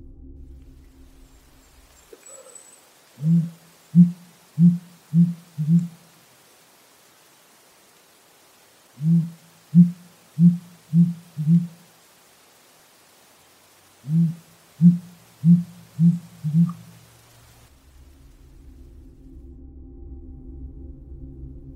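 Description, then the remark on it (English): A sooty grouse gives deep, low hoots in three evenly paced series of about five notes each, separated by pauses, over a faint steady hiss with no talking. “Seattle is right in the middle of sooty grouse territory. Here is an example.”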